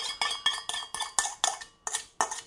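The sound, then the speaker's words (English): A spoon scrapes and clinks repeatedly against a mixing bowl, scraping out the last of a cinnamon filling mixture, about ten quick metallic strokes in an uneven rhythm, bright and clattery, with no voices. “This is me trying to get absolutely everything out of the bowl.”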